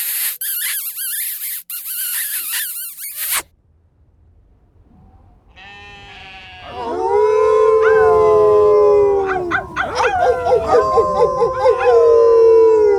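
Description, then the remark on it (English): Wolves howl together in a loud chorus, several long wavering voices rising and falling over one another, following a brief burst of harsh noise and a quiet pause. “Right, enough howling.”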